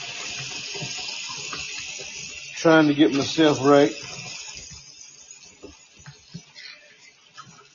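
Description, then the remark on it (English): Steady running water from a kitchen tap hisses throughout, fairly loud, while a person cleans up in the kitchen and speaks briefly over it partway through. “That was water. I'm in the kitchen cleaning up.”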